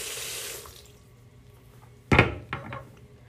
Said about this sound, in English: I'm gonna wash out all the toothpaste out of the sink.